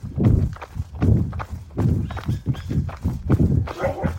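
Steady footsteps of two people out running in the morning in El Paso thud along in a quick, even rhythm, fairly loud, with a rough outdoor texture around them and no clear talking.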